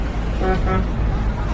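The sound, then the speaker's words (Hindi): Steady road rumble of a car driving on a highway, with a couple of short horn toots partway through, fairly loud throughout. A man is driving while trying to explain something to his wife. “ऐसा लग रहा था जैसे दीपक ड्राइव करते करते अपनी वाइफ को समझाने की कोशिश कर रहा था।”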